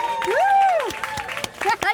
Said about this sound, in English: Cut! Everyone applauds.